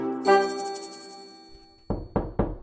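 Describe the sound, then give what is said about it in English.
A sustained musical tone fades out, then a neighbouring doctor knocks firmly on a door: four quick, solid, loud raps, with no talking. “Oh, hang on a second. That must be the doctor next door.”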